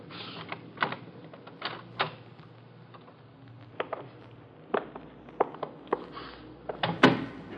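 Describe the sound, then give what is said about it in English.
A museum door being opened: a string of sharp, irregular clicks and knocks, like a latch and handle being worked, with a low hum underneath and no voices. “this door might do it.”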